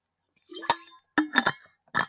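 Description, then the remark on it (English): A few sharp glassy clinks and knocks in an irregular sequence, with short ringing tones, like a glass being handled and set down while someone drinks water. No one speaks. “Let me drink some water. Give me a second.”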